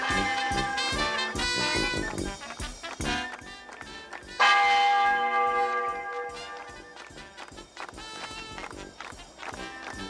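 Church bells ring out in a scene from the film Blazing Saddles, loud, resonant strikes with lingering tones, one especially bright peal about midway, over a steady rhythmic clatter like hooves or running footsteps.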